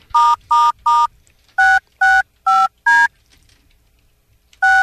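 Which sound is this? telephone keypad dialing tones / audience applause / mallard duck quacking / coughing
telephone keypad dialing tones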